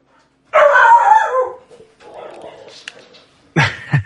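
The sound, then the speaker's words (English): A dog, Gus, at home lets out a loud, drawn-out bark lasting about a second, followed by quieter rustling and whimpering noises, then another sharp, loud bark at the end. “We seem to be having a canine debacle here at the house.”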